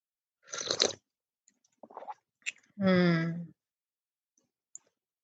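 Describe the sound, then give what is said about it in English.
A quick slurping sip of hot green tea, then a few faint mouth clicks and a swallow, ending in a short, satisfied hum or sigh. “When you're ready, let's take a sip.”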